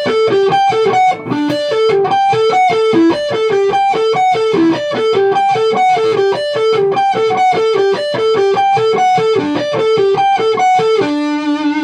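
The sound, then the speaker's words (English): An overdriven electric guitar on the bridge pickup plays a fast, repeating arpeggiated riff with a bright, crunchy rock tone, loud, ending on a sustained held note. No one speaks. “We've got the … sound.”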